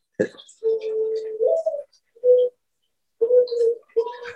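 A bird clock sounds its hourly call: a recorded dove's soft, hollow coos in three separate phrases with short pauses between them, moderately loud, with no one talking over it.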